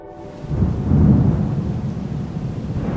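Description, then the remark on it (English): A deep, rolling rumble of thunder swells and lingers over a steady wash of rain, the storm sounding heavy with no voices present. “So, end of October, a few weeks after she passed on, it was a very stormy night.”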